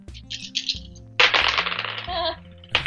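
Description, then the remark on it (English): Five dice are rolled out and clatter loudly across a hard tabletop in a sustained rattling burst, with a few lighter clicks before and after, over a low background murmur. “Those were loud dice.”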